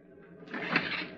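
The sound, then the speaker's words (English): The door of a ship captain's cabin opens at sea as a storm brews, with a brief scraping, rushing sound that swells quickly, peaks sharply partway through, then holds steady until the end. No voices are heard. “I opened the door.”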